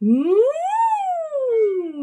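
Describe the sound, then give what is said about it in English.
A single voice slides smoothly upward from a low pitch to a high peak and then glides back down, an unbroken siren-like warm-up hum lasting about two seconds, imitating a siren. “So we can do some sighs and more sirens.”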